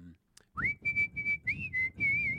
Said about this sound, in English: Always whistling that tune. The generic tune. Yeah. No, I can't help but whistle.